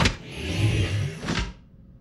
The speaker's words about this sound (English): Vehicle 278, unlock doors. Code is, Alpha Delta 189.